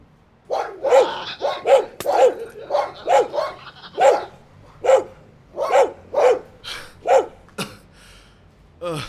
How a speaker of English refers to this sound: Nós temos armas e cães. Cães muito grandes e muito ferozes.